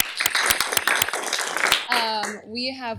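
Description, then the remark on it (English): A crowd at a school panel event applauds the student organizer and the Diversity, Inclusion, and Belonging Office with dense, steady clapping for a couple of seconds, then the clapping dies away as a person begins speaking. “Can you give a big round of applause?”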